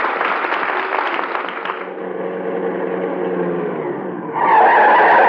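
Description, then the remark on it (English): A car's brakes screech loudly as it skids to a stop, a sustained high squeal over rumbling engine noise, rising sharply again near the end. “Them brakes fixed.”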